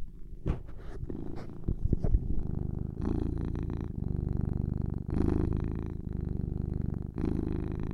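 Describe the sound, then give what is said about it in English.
A cat sitting on a person's lap purrs loudly and steadily, a continuous rumbling drone with rhythmic pulses, preceded by a few brief rustling bumps at the start. “The loudest fucking purr.”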